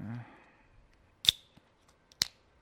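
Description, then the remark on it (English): The cap of a bottle of Bell's Oberon wheat ale is pried off: two sharp, bright metallic snaps with a ringing edge, about a second apart, with faint ticks between. A brief murmur of voice comes just before. “All right, anyway, I'm going to open this up. I got a Bell's Oberon.”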